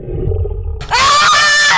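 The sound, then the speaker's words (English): A bear in a forest roars loudly, a harsh, sustained bellow that bursts in after a low, rumbling growl and holds for about a second. “The small roar, everyone stopped.”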